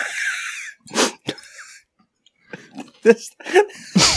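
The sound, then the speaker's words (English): Wet slurping and mouth sounds from eating off a spoon, several short irregular bursts with quiet gaps between, fairly loud, with brief breathy noises mixed in. “It's like, oh yeah, slurp it, baby, slurp it.”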